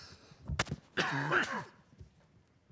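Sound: throat clearing cough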